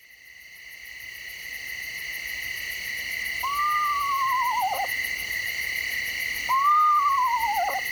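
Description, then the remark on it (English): An eastern screech owl gives two descending, quavering whinny calls a few seconds apart, heard clearly over a steady chorus of night insects trilling in the background; recorded by Lang Elliott of Nature Sound Studios. “You might say the eastern screech owl lives up to its name with its range of calls, including the whinny.”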